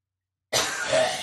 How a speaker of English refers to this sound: Just let me cough.